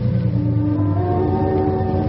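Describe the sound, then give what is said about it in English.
A car engine rumbles steadily and loudly as the car pulls up and stops at a bridge, a low droning hum with a constant pitch, with no voices over it. “Stop here”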